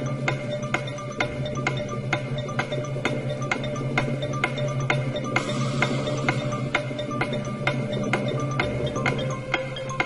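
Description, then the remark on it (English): A countdown clock mechanism, counting down to the date of leaving the European Union, ticks steadily, with sharp, regular clicks about twice a second over a continuous low mechanical whir and hum. No one speaks. “It is now time to check in with the countdown clock to see how long before it is that we don't leave the European Union and nothing happens.”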